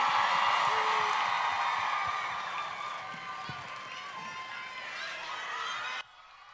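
A large crowd applauds and cheers in a dense, steady wash of noise, with a few whistles over it. It eases off slightly before cutting off abruptly near the end.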